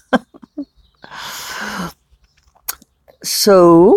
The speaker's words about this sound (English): Somebody is making weird noises from the neighbor's house. I think it's like morning coughing.